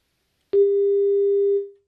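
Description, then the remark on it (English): A single steady electronic telephone line tone on a call-in caller's line during phone line problems, sounding for about a second before cutting off abruptly, loud with no voices over it. “gave us the tone. Yes. Phone line problems.”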